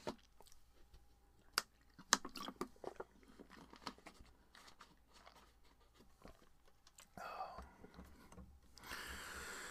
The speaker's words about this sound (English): Let me take a sip of water quickly.